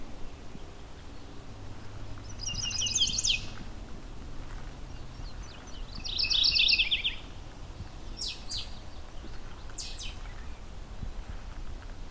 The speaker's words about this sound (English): Here we go, mourning warbler. Is there chestnut sided? Mourning warbler.